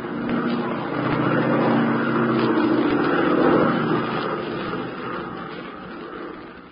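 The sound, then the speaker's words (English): An airplane piloted by Tula drones steadily in flight, its engine a loud, continuous hum with a rough propeller throb that swells slightly midway and then eases off a little. “Here we are in an airplane piloted by Tula.”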